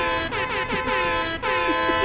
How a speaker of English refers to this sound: Oh. Cool horn on that car. Yeah, thanks. Yeah, I just got it installed.